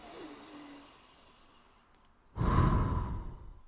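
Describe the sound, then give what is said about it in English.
A deep breath: a slow, soft inhale through the nose gives way to a louder, breathy exhale through the mouth, with no talking. “Step one, close your eyes and take in a deep breath. Breathing through your nose in, out through your mouth again.”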